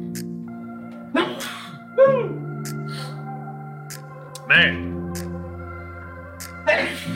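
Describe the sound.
Several short, sharp sneezes, about four, burst out at uneven intervals over a steady bed of sustained musical tones, with a brief spoken word in the mix.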